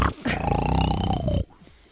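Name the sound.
voice imitating loud snoring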